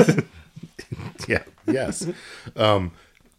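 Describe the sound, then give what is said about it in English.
A person voices a few short, gruff barking sounds in a bouncy rhythm, mimicking a dog, with brief pauses between the bursts and a clear delivery. “a dog who is also a robot mm-hmm. and is also Jack Palance and is like, woof woof baby, woof woof”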